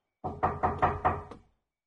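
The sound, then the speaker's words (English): A tavern keeper knocks about six firm, evenly spaced times on a wooden upstairs door in a tavern, fairly loud, with the last knock a little softer and no voices around it. “Knocks on the door again.”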